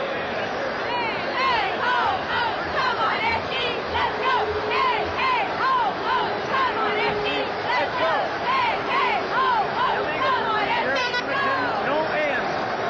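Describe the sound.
A cheer from Edmonton cheerleaders on the cold sidelines of a football game, their team behind 38-6: a group of voices shouting and chanting together in a loud, steady stream, the pitched yells rising and falling over a continuous wash of crowd noise.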